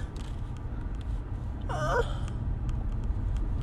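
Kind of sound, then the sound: human body sound, human yawn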